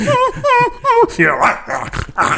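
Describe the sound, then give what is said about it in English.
A person imitates a dog, giving three quick, evenly spaced yelping barks, then breaking into rougher, growly bark-like noises; the mimicry is loud and fills the short clip. “Sound effect. You could try out for a police academy.”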